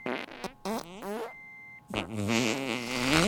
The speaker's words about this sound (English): That same day, at the medical center, a doctor farted.